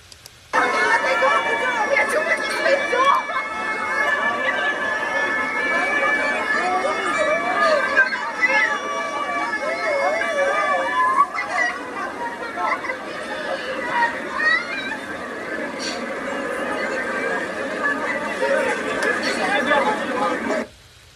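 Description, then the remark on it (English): A large crowd gathered in a park in Belgium being broken up by Belgian police using water cannons: dense, overlapping voices and calls form a steady, loud babble that runs unbroken for about twenty seconds. “This is in a Belgian park where the Belgian police are actually using water cannons to stop people from gathering in public.”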